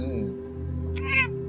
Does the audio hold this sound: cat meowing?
yes